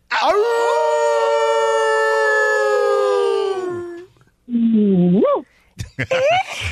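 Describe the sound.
A caller from Virginia imitates a wolf, holding one loud, long howl that slowly falls away, then adding a shorter rising howl and a few quick yips.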